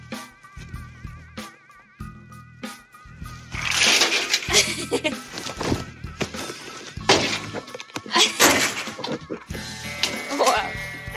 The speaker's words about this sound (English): Wow. Impressive, isn't it? I'm now shuffling the cards.